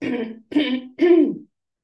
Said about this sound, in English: oh my gosh, I'm so sorry. I'm going to cough.